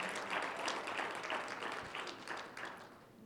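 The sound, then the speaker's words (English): A crowd gives Jesus a round of applause, dense overlapping claps forming a continuous wash of sound that holds fairly even before easing off slightly toward the end. “Well, let's give Jesus one round of applause.”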